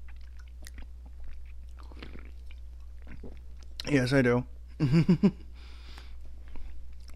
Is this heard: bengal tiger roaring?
no